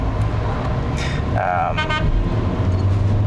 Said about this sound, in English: Who's honking at me, huh?